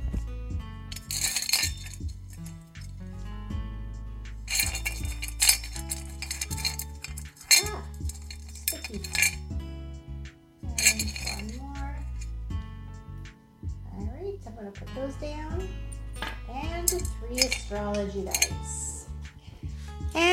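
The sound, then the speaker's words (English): Small metal charms rattle and clink together in repeated bursts as someone rummages through them with eyes closed to pick three, fairly loud, over a steady tonal background. “Then we're going to pick three charms. And with my eyes closed, I'm going to pick three.”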